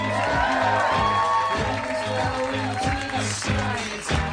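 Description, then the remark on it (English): An audience at the Nerd Melt Theater in Hollywood, California, cheers and applauds as Dan Harmon is introduced at a Harmontown show, a dense, steady roar of clapping and whooping voices that stays loud through the whole few seconds, with some rhythmic low thumps underneath. “You're a very spirited crowd.”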